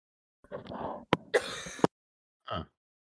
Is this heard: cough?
yes